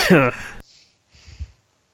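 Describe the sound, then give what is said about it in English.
A loud, raspy cough bursts out, followed after a brief pause by a softer, throaty second cough, like a short coughing fit. “I'm having a cough attack.”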